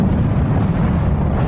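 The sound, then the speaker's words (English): A loud, sustained explosion sound effect at the start of a rap song, a dense rumbling roar heavy in the low end that holds steady at full volume throughout, with no voices present. “There's always like explosions before these rap songs.”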